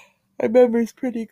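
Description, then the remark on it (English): A voiced yawn: a drawn-out groaning breath of about half a second, followed by a shorter trailing vocal sigh, with no clear words. “I'm not tired. I'm just yawning.”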